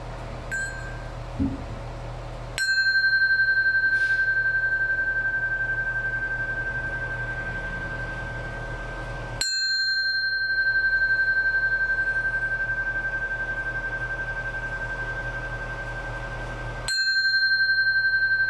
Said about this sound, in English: I'm going to begin with three sounds of the bell, and then I'll take you into our meditation.